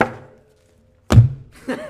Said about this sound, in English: I'm not assaulting it. You slammed a book on it. I said it. That's not what the audio says. No, the audio says you threw the book at it.